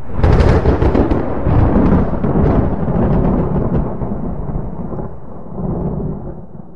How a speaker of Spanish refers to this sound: Y por supuesto, casi siempre vienen acompañados de poderosos truenos.